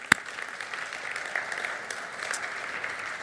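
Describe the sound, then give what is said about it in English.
An audience claps together in a dense, steady patter of many hands, with one sharp, loud clap standing out at the very start before the applause carries on evenly. “That's worth a clap.”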